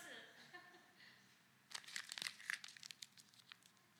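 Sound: crumpling a paper banknote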